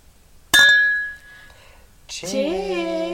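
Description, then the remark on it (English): Glasses clink together once in a toast, a bright chime whose ringing tone slowly fades, followed by a person speaking loudly. “Cheers!”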